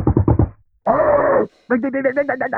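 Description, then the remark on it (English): A voice imitates a UPS delivery driver's loud, urgent police-style knocking on a door: a quick burst of four thumps, a sustained vocal tone, then a rapid run of pounding knocks, all forceful. “The UPS dude and the Amazon, and I don't remember who it was today, but I think it was the UPS dude, rings the doorbell and knocks on the door like police.”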